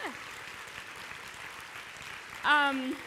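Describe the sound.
Audience applause fills the whole three seconds as a dense, steady patter of clapping, with a short sliding tone at the start and a loud voiced cheer rising above it near the end.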